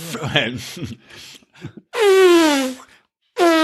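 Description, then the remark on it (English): A person imitates an elephant trumpeting with their voice: after some brief talking, a loud, brassy, wavering blast slides downward in pitch, and a second blast starts just before the end. “can we hear your elephant impression again?”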